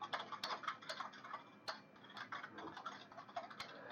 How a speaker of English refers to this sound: The sound of furious keyboards. You stop the security system, but. This typing is actually Foley effects for Rose typing on the computer.